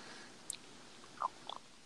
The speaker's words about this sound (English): Somebody's like chewing on something. It's really annoying. I'm not chewing on anything. I'm not chewing on anything.